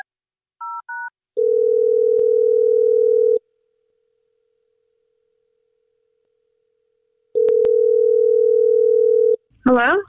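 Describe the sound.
Two quick dual-tone keypad beeps as a woman's phone number is dialed, followed by two long, steady ringback tones separated by a pause, then a woman briefly answers at the end.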